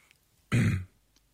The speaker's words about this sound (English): Stop coughing like that.